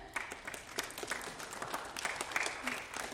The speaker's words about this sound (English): So if you guys will stand up so we can give you a round of applause